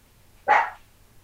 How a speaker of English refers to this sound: It's usually not the barking dog I have to deal with. It's a different barking dog.